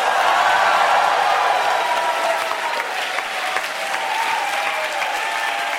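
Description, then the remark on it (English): An audience applauds loudly, a dense, steady wash of many hands clapping that holds at full strength for about six seconds without fading or breaking. “I will say the name of the person, and then the audience will applaud loudly if you like it, not at all if you don't like it.”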